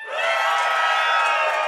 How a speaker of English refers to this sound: Well, that got way more applause than me talking about my play.